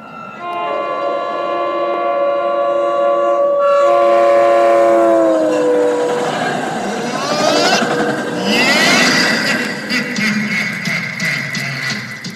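train passing with horn

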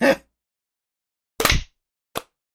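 hand clap

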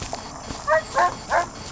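dog barking

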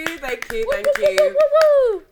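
applause

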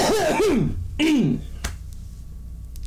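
deliberate cough

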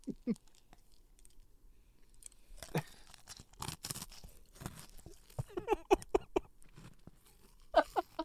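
crunchy chewing of food

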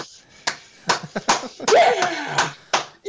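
slow clap

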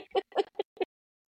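chickens clucking

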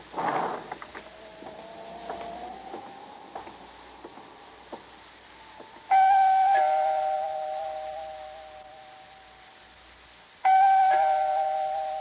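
apartment doorbell ringing

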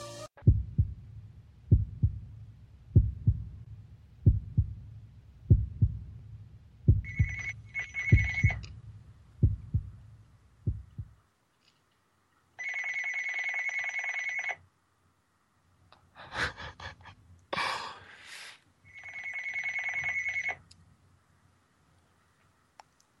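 telephone ringing

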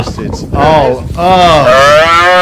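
cow mooing

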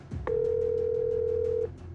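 telephone dial tone

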